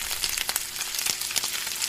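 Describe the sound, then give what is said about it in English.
Bacon sizzles steadily in a frying pan, cooked for a while until crispy, a dense crackling hiss with scattered pops, fairly loud, with no voices. “Boy, we cooked that bacon for a while.”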